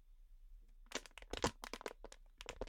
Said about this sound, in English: Look, that's your water bottle that you just crunched.